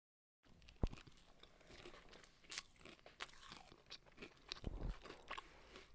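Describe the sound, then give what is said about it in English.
Crunchy chewing of food by people, with irregular bites and crackly, crinkly mouth sounds, fairly quiet and continuous after a brief silence, with no talking. “I'm sure your fans are enjoying us chewing.”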